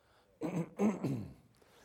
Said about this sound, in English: Sorry, I keep coughing tonight.